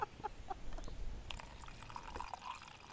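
Water splashes and trickles as it's poured off from a cooking pot on the banks of the River Bergerac, a steady gush dotted with bright little drips and gurgles, with no talking.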